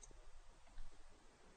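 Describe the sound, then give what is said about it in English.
Faint phone-line clicks, like a caller hanging up, sounding as a few soft ticks over a low hiss with no one talking. “As I heard about that, my phone might have... No, that was Shane hanging up.”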